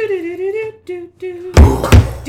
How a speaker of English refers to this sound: Kaboom. What is canon? Let's shoot off a cannon.